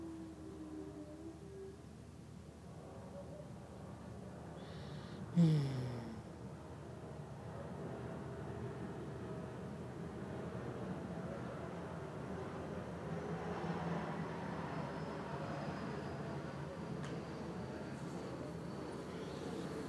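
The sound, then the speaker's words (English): A steady, broad roar of an aeroplane overhead, swelling gradually and staying loud through the second half, with a brief thump near the start and no talking. “An aeroplane is coming. I have to pause.”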